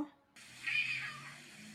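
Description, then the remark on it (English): A cat meowing at a door at midnight gives one drawn-out meow that swells and then fades over about a second, with a faint steady hiss in the background and no talking. “It's just meowing at the door.”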